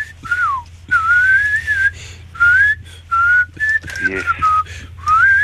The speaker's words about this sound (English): And keep unless it's the Harlem Globetrotters, who are brilliant. Oh, can you whistle that tune that they do? I can't.